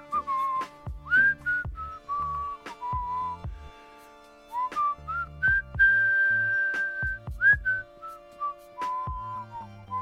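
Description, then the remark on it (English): A person whistles a wandering, slow tune for about ten seconds, clear, with pitch slides and short pauses between phrases, alongside faint low background thumps. “So I'm just going to whistle for about 10 seconds starting now.”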